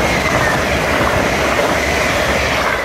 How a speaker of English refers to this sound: This is the first proper passenger train making that journey.